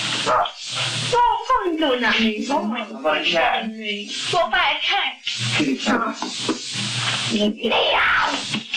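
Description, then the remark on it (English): A person mimics a dog with a string of voiced barks, yips and whimpering sounds, fairly loud, mixed with breathy hissing bursts across several seconds. “How about a dog? Is that any dog? Dog. Do a dog.”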